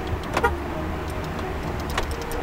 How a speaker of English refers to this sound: So if you want to go ahead and, you know, lock and unlock your car for me real quick. Okay. And then lock it again, of course.